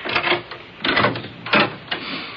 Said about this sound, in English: Now, let me open the door, and don't you say a word.